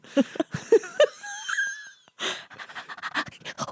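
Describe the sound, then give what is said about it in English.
An excited little dog wheezes and pants in quick, high-pitched bursts, with squeaky whine-like tones, followed by a stretch of rapid huffing breaths. “Okay, no, that was just a really excited little dog.”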